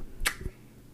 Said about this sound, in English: That was a bad clap, bro. Bro, that was the worst clap.